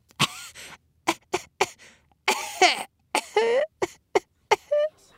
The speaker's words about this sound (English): You know, we go to the bathroom and all that comes out is a small cough and a wheeze from Mr. Penis.